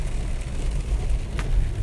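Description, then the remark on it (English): Heavy rain pours over a moving car, a steady wash of hiss layered on a deep, constant road and engine rumble, with a brief swishing sound near the end. No one speaks. “It's pouring the rain. I have to stop because I'm having a hard time seeing while I'm driving.”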